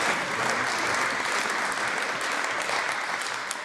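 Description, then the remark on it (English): Nationalist MSPs in Scotland's Parliament clapping steadily after an answer from Scotland's First Minister about Scotland's National Health Service: a dense, continuous patter of many hands at fairly even loudness for a few seconds, with no voices over it. “How can nationalist MSPs actually clap such a despicable answer from Scotland's First Minister in Scotland's Parliament about Scotland's National Health Service?”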